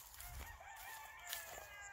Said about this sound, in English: You hear the birds waking up.